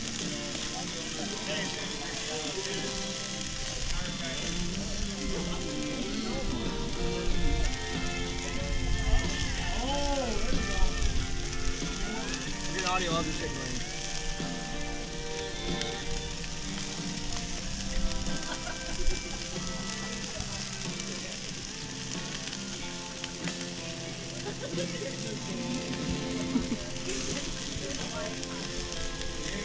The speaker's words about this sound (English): Listen to this audio of these wings cooking.